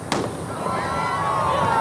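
A single sharp cannon shot booms out right at the start, marking the start of the Sydney to Hobart yacht race on Boxing Day amid bright sunshine, wind and pelting rain, then fades into a steady, rushing wash of wind and outdoor noise that continues to the end.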